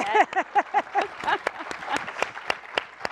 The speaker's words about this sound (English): yeah, you can clap.